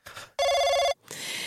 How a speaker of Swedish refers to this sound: hotelltelefonen har ringt 3 gånger, svara, det kanske är något som har hänt liksom.